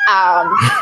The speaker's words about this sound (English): I'm sorry if you can hear this siren.